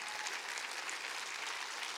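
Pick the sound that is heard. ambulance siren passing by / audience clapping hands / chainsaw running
audience clapping hands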